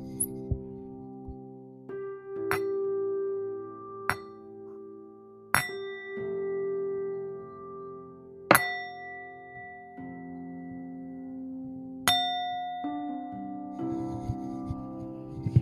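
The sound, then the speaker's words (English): A meditation bell is struck several times at uneven intervals during calm abiding meditation, each bright strike ringing out and slowly fading, over a soft sustained tonal drone with no talking. “I will be doing calm abiding meditation. We will be using the bell.”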